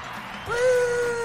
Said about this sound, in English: They're cheering for us, …, our adoring fans. Yeah, they are. All three of them. All three of them out there.